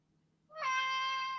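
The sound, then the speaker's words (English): A single drawn-out cat meow, starting after a brief quiet moment and holding steady and fairly loud for nearly a second, with no talking. “Oh, my cat wants to say hello.”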